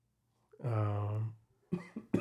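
A drawn-out throaty cough with a rough voiced tone in an office, followed by a few quick, sharp coughing bursts. No talking around it.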